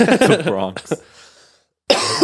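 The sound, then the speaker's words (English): A person lets out a couple of short, sharp coughs, bracketed by voice sounds, then a brief pause before talking resumes. “Although I think I'm developing a cough as well.”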